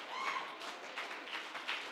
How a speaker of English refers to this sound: Go ahead, somebody clap your hands one more time. That's what we came for.